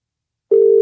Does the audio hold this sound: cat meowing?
no